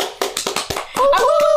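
Quick, sharp hand claps in an uneven burst of five or six, then a few more claps continue under a sustained, wavering tonal sound that comes in partway through.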